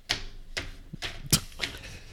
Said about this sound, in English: I like to make it sound like I'm stacking a bunch of paper when I literally am just holding one piece of paper in my hands.